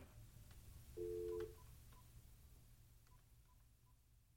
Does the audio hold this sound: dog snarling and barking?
no